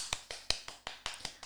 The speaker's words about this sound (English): I need a round of applause.